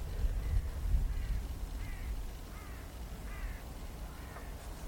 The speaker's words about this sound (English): Sort of lonely cries of crows.